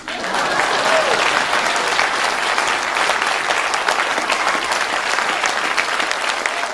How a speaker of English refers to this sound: Now, just for comparison's sake, this was Jeb Bush's please clap moment back in 2015 or 2016.